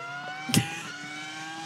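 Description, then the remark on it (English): A race car engine hums with a steady, buzzing drone, broken by two short, louder bursts, one early and one right at the end, as it is revved up. “It was revving up.”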